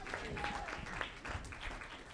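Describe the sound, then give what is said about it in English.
Church applause, a dense, steady patter of many hands clapping at once, fairly loud and sustained throughout, with a faint whistle or cheer rising briefly over the clapping. “of applause. Praise God.”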